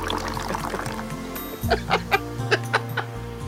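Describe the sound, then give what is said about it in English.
Champagne poured from a height into a glass, partly missing and hitting the rim: a steady rushing stream with a low hum underneath, then a run of sharp splashy bursts toward the end. “So whoever was trying to pour it didn't do a very good job. Oh, those sky pours are just messy.”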